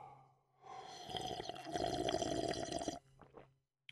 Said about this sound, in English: Let me sip this little coffee here.